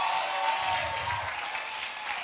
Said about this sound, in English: Come on and give our folks a round of applause who gave their life to Jesus. There's one right there.